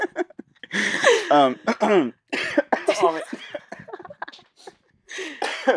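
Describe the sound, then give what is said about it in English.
A fit of harsh, sputtering coughs from someone choking on saliva, coming in several rough bursts with strained, wheezy gasps between them over about six seconds. “I choked on my spit.”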